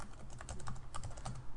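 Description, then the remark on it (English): Quick, uneven clicking of keys on a computer keyboard, a steady flurry of small taps at low volume, with no voices. “And you can hear me typing.”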